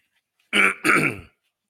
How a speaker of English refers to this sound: I'm doing too much coughing. They said bad for rating.